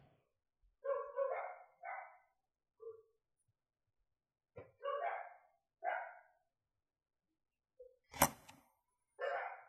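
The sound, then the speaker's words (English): A puppy barks in a series of short, yappy bursts, about eight or nine of them at irregular intervals, fairly loud, with one sharper, louder bark near the end. “Hey, come on, pretty puppy.”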